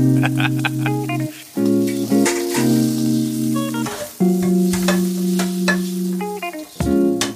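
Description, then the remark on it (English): Steady sizzling and frying with scattered crackling pops over sustained humming tones that shift pitch a few times, with no one speaking. “Is it sizzle time? You know it. Sizzle.”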